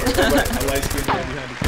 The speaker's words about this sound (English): Give yourself some gunshots.